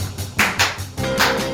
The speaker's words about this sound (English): Now we're going to clap.